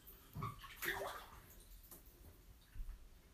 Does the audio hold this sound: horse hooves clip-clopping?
no